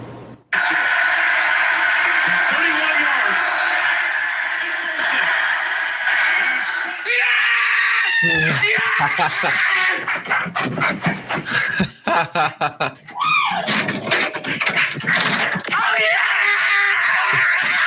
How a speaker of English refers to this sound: He ran outside. Yeah, that's him running through his neighborhood screaming.